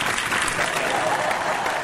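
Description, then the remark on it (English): A crowd applauds steadily, many hands clapping in a dense, even wash of sound that holds at a fairly loud level throughout without pause. “too bad we can't interrupt Greg with 5-minute bouts of applause.”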